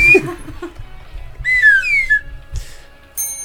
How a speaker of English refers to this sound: Oh, that's mine. Oh, that's your penny whistle? Yeah.